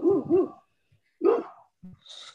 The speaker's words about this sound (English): As we have a dog just hammering, barking in the background.